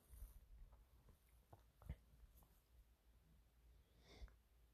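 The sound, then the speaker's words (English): A dog snores softly next to the speaker, with quiet, irregular snorts and breathy snuffles against a low, hushed background. No one speaks. “You might even hear my dog snoring next to me.”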